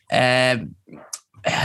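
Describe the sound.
A person sneezes once, close and fairly loud: a drawn-out voiced build-up, a short pause, then a sharp breathy burst, followed right away by more vocal sound.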